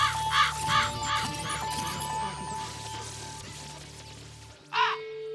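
A raven caws three times in quick, harsh succession, then once more after a pause, loud over a low steady hum.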